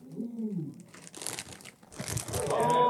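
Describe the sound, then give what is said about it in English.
A low voice briefly sounds, then a bag of Smartfood white cheddar popcorn crinkles and crackles in loud, uneven bursts, growing busier and louder toward the end. “It's the smart food white cheddar popcorn.”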